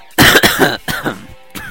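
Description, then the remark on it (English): A loud coughing fit: four harsh coughs in quick succession, the first ones run together before a short pause and a final cough, with no talking. “Just as I finish the question, he decides to go into a coughing fit, ladies and gentlemen.”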